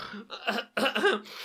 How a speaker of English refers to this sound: I've been really ill for a few days. Coughing up chunks? Yeah, lots of phlegm. Sounds nasty.